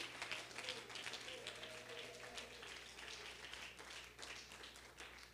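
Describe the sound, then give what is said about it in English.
An audience claps their hands together, a steady, dense wash of many overlapping claps that carries on evenly for several seconds over a low, constant hum. “Clap your hands, and when you have done that, you may be seated.”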